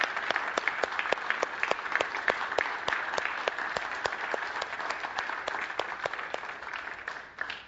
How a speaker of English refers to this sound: And so guys, would you stand with me and let's give the ladies in our life a huge round of applause. They deserve it.